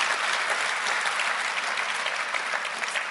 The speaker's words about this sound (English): That's a big hand of applause